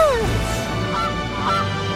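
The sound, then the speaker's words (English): Geese honk loudly and steadily for about two seconds in a 1997 Pepsi TV commercial, their nasal calls overlapping in a dense chorus with a falling cry at the start and no talking. “Oh, they got the geese and the Pepsi icon.”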